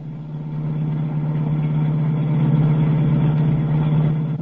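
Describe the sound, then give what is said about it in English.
A car engine hums steadily throughout, a continuous low drone at moderate loudness with no voices, the interior sound of a car driving through a city at about 5 o'clock in the morning. “As the scene opens, we find the doctor in the car of the strangers.”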